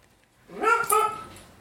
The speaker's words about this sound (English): And he has a very weird duck-like bark. Hence the duck-like bark in the background.